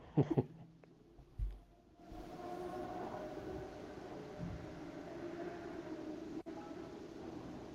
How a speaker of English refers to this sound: Is that a car? I live close to a big street, and it's motorcycles every night. We hear them all the time.